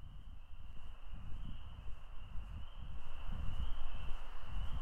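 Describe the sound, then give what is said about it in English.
A dense chorus of frogs calling for females on a nice evening, heard from a driveway: a steady, unbroken high-pitched trill layered over a busy mix of low, pulsing croaks, moderately loud and continuous with no voices. “This is basically like going to a frog bar, is how I think of it. They're all clamoring for the ladies' attention.”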